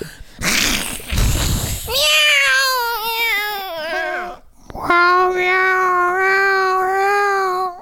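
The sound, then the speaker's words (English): A person imitates a cat with two long, drawn-out meows, the first wavering in pitch and the second steady, after a short burst of breathy noise. Fairly loud. “Meow. Meow. Meow. Meow. Meow. Meow. Meow. Meow. Meow.”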